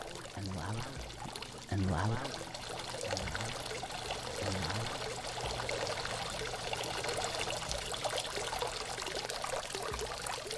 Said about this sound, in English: I'm going to turn that off because it sounds like a bathroom break, but just imagine that water burbling up louder and louder.